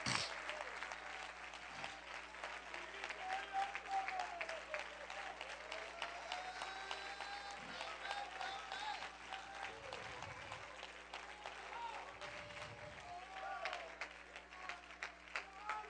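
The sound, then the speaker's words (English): A church audience clapping their hands to Jesus in worship, a dense, steady wash of many overlapping claps lasting the whole stretch, with scattered voices calling out faintly underneath. “Let's all clap our hands to Jesus right now.”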